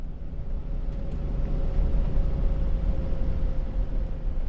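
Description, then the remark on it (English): Steady road rumble inside a moving car on an icy road, recorded from a microphone on a low, heavy mic stand in the back of the car as it heads slightly downhill past the farm Morastadir toward a summer cabin. Heavy in the low end, with a faint constant engine hum running through it. No voices, just continuous driving noise. “I've set the microphone on a low and heavy mic stand in the back of the car, monitoring through headphones.”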